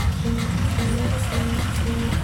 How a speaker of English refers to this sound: I'm sitting in a communal bus taxi called the Trotro, and we're stuck in traffic. I'm crammed up against the other passengers. I'm dripping with sweat. The latest Azonto hits blast on the stereo.